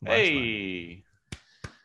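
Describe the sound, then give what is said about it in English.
A long, wavering vocal cheer without words fades out, followed by two sharp, crisp hand claps from one person, spaced about a third of a second apart, given as a standing round of applause for baseball player Francisco Lindor. “For those listening on our podcast, I'm standing up for Lindor, giving him a round of applause.”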